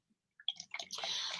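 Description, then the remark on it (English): Chardonnay wine glugs from a bottle into a glass, starting with a few splashy gurgles and settling into a steady, bright pour, fairly quiet, with no voices. “I love to hear wine pour. You hear that? It's like a waterfall.”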